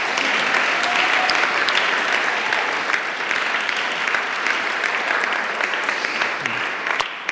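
Sustained audience applause, a dense, steady wash of many hands clapping at an even loudness for several seconds with no voices standing out.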